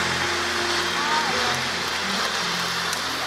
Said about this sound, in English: Please welcome everybody, our dear, dear friend and our spiritual mentor, Brother Bo Sanchez. Come on, clap your hands for our leader, our friend.